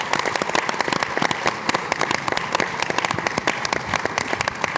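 An audience breaks into a round of applause, many hands clapping in a dense, steady patter at a fairly loud level for several seconds, with no voices speaking over it.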